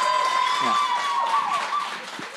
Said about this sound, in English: He did not disappoint, am I right? Give him one more round of applause if he made you laugh a little bit.